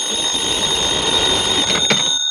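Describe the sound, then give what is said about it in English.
A telephone rings in the 1956 radio drama Yours Truly Johnny Dollar, serial The Purling Matter, with a loud, steady, high-pitched electric bell tone that runs unbroken for about two seconds, with no voices over it. “Your number's ringing now, Mr. Dollar.”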